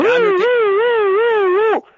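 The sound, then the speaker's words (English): A man imitates a siren as a sound effect with a loud, steady wail whose pitch slowly rises and falls for nearly two seconds before cutting off abruptly. “Not yet, but that siren is from ….”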